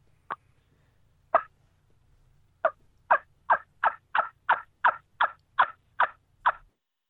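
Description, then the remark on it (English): A series of about thirteen short, raspy hen turkey yelps blown on a wingbone call, starting with spaced notes and then settling into a quick, steady rhythm at a moderate volume, with no talking. “Now, I can build a gobbler bone that you can really get down on, but most hen bones are designed to call softly, from medium to soft.”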